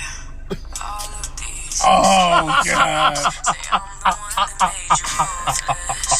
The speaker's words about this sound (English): Oh, God. Did you hear that? Did she yawn on us? Yeah. That was beautiful. I've never heard that sound.